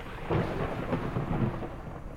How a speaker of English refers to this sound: Could that be the sound of rain outside? It might be Blackjack Justice, Episode 8, Justice and the Deluge. It was the third straight day of rain that did it.